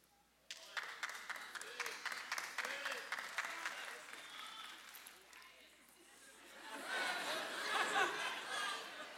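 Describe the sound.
An audience bursts into sustained clapping, a dense patter of many hands that eases briefly before swelling louder again near the end, with crowd voices and laughter mixed in.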